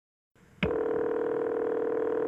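A short click sounds over a low line hiss, then a steady, unbroken telephone tone with a bright, buzzy pitch holds at an even level until the end, as a man dials 911 from his home in Springfield, Illinois. No one speaks.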